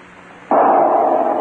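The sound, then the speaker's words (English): A single hunting gunshot, fired at a grouse breaking cover in woodland, cracks out suddenly after a half-second of quiet, followed by a loud, lingering roar that holds steady to the end. No voices. “Got him. Good shot, fellow.”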